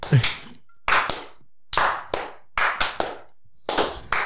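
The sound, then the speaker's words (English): A short round of hand clapping: sharp, bright smacks landing in loose, uneven pairs with brief pauses between them, fairly loud and otherwise without talk. “Anyway, we'll give that a little clap, eh?”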